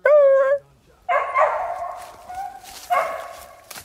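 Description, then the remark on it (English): A female coonhound's excited strike bark on locating a raccoon's scent: a sharp, high yelp followed by two loud, drawn-out baying bawls, with no one talking. “That would mean she located the scent of a coon, and there's an excited bark.”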